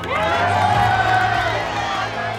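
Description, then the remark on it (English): A crowd of caballeros (horsemen) cheers and shouts in praise of Zorro as they follow him out into the courtyard, a loud, steady roar of many voices with higher whoops rising over it for a couple of seconds. “The caballeros shouted in praise and followed Zorro out into the courtyard.”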